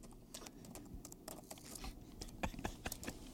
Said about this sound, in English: The sound of the keys typing.